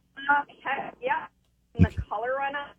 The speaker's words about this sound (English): Can you take us off speaker? Because your phone is kind of not being nice to us.